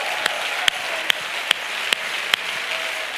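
audience applause

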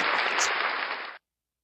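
applause

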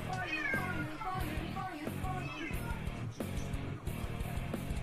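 cat meowing

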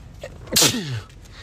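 sneeze

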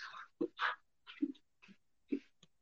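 dog barking excitedly

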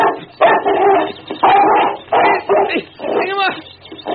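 dog barking and whimpering

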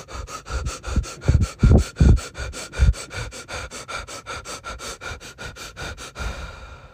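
deep breathing

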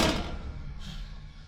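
door being shut

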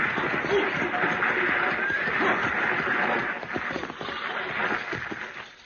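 six-horse stagecoach approaching

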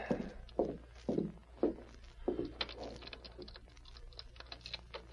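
knock

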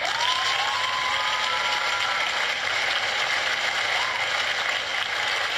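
applause

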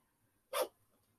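dog sneezing

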